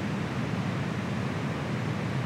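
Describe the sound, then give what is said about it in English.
Steady white noise: an unbroken, even hiss spread across the whole range, holding a constant level for a couple of seconds with no voices or other sounds. “Let's start with good old-fashioned white noise.”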